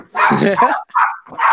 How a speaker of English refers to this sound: my dog, he is a 14-pound Jack Russell Chihuahua who thinks he's a pit bull.